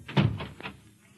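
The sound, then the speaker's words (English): A heavy door thuds shut, followed by a couple of quick, sharper clicks like a latch or lock being turned, then quiet. “Lock the door.”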